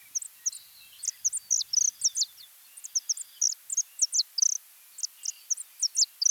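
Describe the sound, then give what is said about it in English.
Saffron finch song: a steady run of short, high-pitched whistled chirps in uneven clusters, with no voices or other sounds alongside. “Native to South America, they were introduced to Hawaii in the early 1960s, mainly because of their colorful plumage and their pleasant whistle-like songs.”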